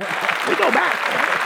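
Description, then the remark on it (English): A short burst of steady clapping from a small audience, dense, with a voice talking over it throughout. “Clap that up.”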